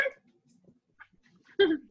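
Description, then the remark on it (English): A dog barks twice in the background, a short yap at the start and a louder, fuller bark near the end, with near-silence and faint rustling in between. “and so every time we talk about dogs, that gets barking in the background.”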